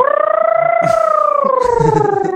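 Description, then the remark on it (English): A voice imitates an old-time race car with one loud, continuous buzzing drone that climbs slightly in pitch, then slowly sinks as it holds steady for a couple of seconds. “Now do an old-time race car.”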